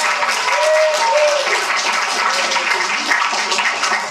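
A crowd applauds steadily for a man who has just been introduced, a dense wash of many hands clapping at an even, loud level for several seconds, with a few faint cheers or voices rising briefly in the mix.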